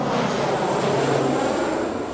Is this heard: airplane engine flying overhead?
yes